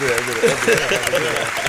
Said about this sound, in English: A round of applause for yourself. Oh, man, wow. First time for me. Round of applause. Yeah, look at that.